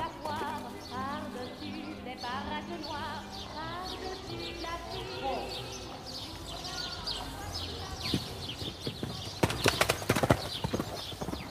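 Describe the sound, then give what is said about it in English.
Horses' hooves clip-clop in a steady, rhythmic patter, mixed with busy tonal background sounds and faint voices, with a burst of louder, sharper clatter near the end. “Round and round the white horses go.”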